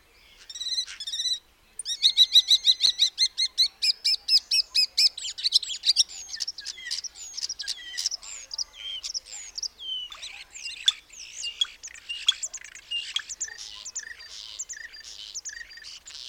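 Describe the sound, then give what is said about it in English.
A single common starling sings a long, busy medley of whistles, rapid clicks, rattles and squeaky chatter, fairly loud with no other voices around. “So that was one bird making all that noise? That is the common starling.”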